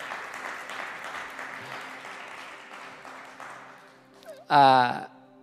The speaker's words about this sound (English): You can clap. It's okay.